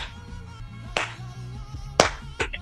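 Sharp hand claps, three of them, punch through a groovy song with a steady low bass line, landing loud and crisp against the music.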